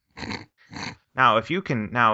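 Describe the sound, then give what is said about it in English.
Two short, rough dog growls rumble, followed by a longer run of strained, whining snarls. The sounds are fairly loud and stand alone, with no talking over them. “Now if you can keep that dog distracted, we can score ourselves some lunch.”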